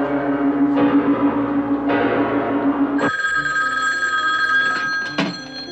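A telephone bell rings loudly, a continuous metallic jangle that changes to a brighter, steadier ring partway through, with no one speaking.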